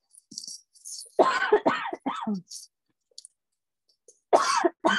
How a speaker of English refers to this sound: Oh, my goodness. Your poor cough. Which is like, all of a sudden. Hold on. I actually think I accidentally inhaled a piece of lilac that was it was like super windy.